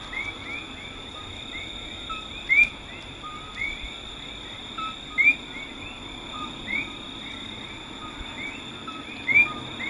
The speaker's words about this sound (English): And I thought, I wonder on any kind of R&R, if they were able to get just a couple of miles away and, you know, possibly hear the tree frogs, even back in the 40s.